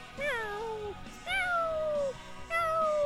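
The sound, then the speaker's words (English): A voice imitates a cat, giving three drawn-out meows in a row, each sliding downward in pitch. The calls are fairly loud, with no talking around them. “There's a cat impression.”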